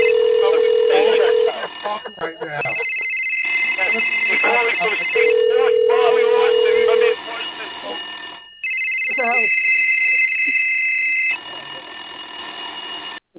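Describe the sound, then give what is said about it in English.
A telephone rings repeatedly in long electronic tones that alternate between low and high pitches, fairly loud, with a voice talking underneath throughout. “Holy shit, there's like 11 phone calls.”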